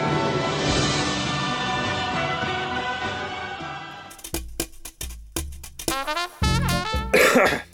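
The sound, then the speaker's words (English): A string of harsh, rapid coughs bursts out one after another, following several seconds of a steady, dense background wash. “If you cough anymore.”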